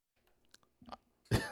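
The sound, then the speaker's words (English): A couple of small throat sounds lead into one loud cough near the end, with no talking. “I can't stop coughing either.”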